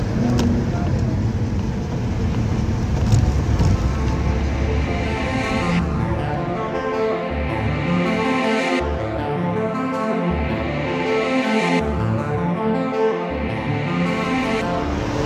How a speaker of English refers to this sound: Hi listeners, it's me. Yes, I'm in a car park.